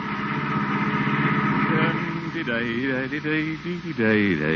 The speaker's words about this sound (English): The day's work is done, and the water commissioner is at the wheel of the family car, heading homeward.